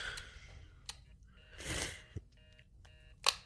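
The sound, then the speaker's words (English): A faint, steady dial tone from a corded landline telephone hums throughout, broken by a few sharp clicks and a brief rustling burst near the middle, with no one speaking. “And it's making an actual dial tone, which you might remember.”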